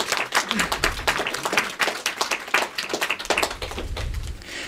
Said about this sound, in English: Come on, give him a round of applause, everybody. Round of applause,